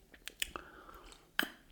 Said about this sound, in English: That was a dynamic pause while I drank some water.